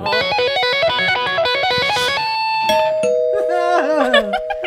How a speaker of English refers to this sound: Hey, wait just a second. I'm going to play. Let me play her rock and roll doorbell, and then we can move on.